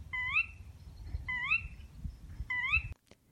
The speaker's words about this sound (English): And some more bird sounds.